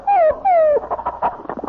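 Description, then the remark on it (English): A dog under a coffee table whimpers twice in quick succession, each a high, falling whine, fairly loud, followed by a burst of muffled voices and shuffling. “Oh, we have a dog now.”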